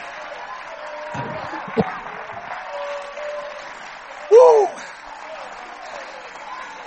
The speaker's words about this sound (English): Come on, clap your hands and praise Him, everybody.